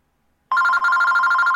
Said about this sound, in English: So, that's Gary getting a phone call about booking his wedding.